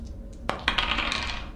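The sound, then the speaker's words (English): A pair of dice clatter onto a hard tabletop, a sharp first impact followed by a quick burst of rattling bounces that tumble and settle within a second, fairly loud, with no voices. “You've got to get less than eight. Here we go. In two dice.”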